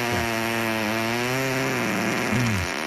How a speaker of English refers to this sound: No, but I do have this amazing fart sound effect. Okay, great.